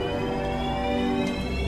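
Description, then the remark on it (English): A steady, humming spaceship engine power-up effect, a dense drone of layered electronic tones holding at an even, moderately loud level for under two seconds, with no voices. “Nice power up, you noise.”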